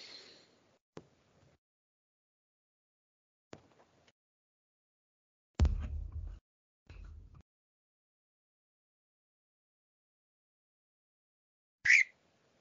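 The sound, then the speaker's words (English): A pet bird lets out a few short, scattered squawks with long quiet gaps between them, ending in one sharp, high chirp; no one speaks. “That'd be that my bird.”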